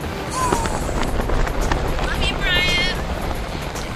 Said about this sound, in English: We've got two more nights, and this helicopter travels at Mach speeds.